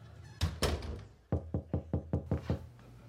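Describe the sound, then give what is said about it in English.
Two heavy booming bangs on a garage door, followed by a quick series of six or seven firmer knocks in a steady rhythm, fairly loud with a rattling resonance; a neighbor knocking after no one answered the front door. “Hey neighbor, tried the front door, nobody answered, so thought we'd give the old garage door a try, and there you are.”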